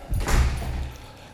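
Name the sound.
door closing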